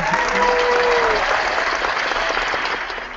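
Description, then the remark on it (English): An audience claps in a steady, dense burst that starts loud and gradually thins and fades toward the end, with a brief whoop at the start. “And claps for that. Right, where are the claps for that?”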